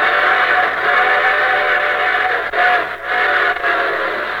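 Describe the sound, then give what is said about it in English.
A loud, sustained train whistle sound effect sounds over the dense rush of a moving train, holding a steady chord-like tone with two brief dips near the end and no voices, opening the Railroad Hour radio show. “And here comes our star-studded show train.”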